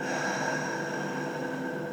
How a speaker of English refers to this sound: You want to use your Ujjayi breath, which is a yogi term for deeper breathing and then an audible exhale.